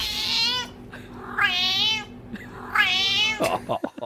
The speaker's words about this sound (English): Anyway, the internet freaked out again because this cat, when it meowed, it sounded like it was a Scouse.